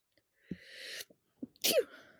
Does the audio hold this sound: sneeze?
yes